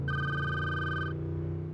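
A car phone in a limo driving through New York traffic rings with one sustained electronic tone lasting about a second, then cuts off, leaving a steady low rumble underneath. No one speaks.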